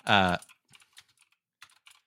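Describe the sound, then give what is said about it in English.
A short voiced sound opens, then a computer keyboard clatters with sharp, clicky keystrokes tapped in irregular bursts, fairly quiet. “Your keyboard's really loud. It's always been so clicky.”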